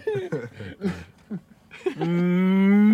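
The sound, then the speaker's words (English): A man speaks briefly, then a loud, drawn-out, low vocal moo, a human imitation of a cow, swells and holds steady until the end. “When you learn how to call a cow. I guess you call that a cow call. Moo.”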